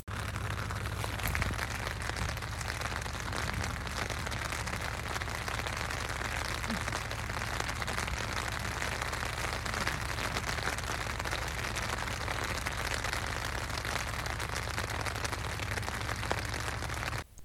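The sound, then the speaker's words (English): Steady, dense patter of rain drumming on a tent overhead around midnight, a continuous hiss with a low rumble underneath, unbroken for the whole stretch with no voices. “So yes, the sleep, what I had of it, was either broken up by zips, farts, fucking or rain.”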